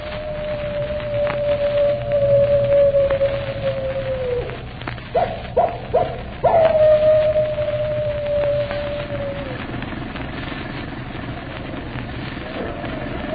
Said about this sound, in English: And they say if you keep your ear to the wind, you can hear his animal howl a hymn of death.